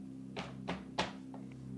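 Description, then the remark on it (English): Three dull, evenly spaced knocks on a door, each a short solid thud, over a low steady hum, followed by a couple of faint softer taps. “He walks up to the door. He knocks three times.”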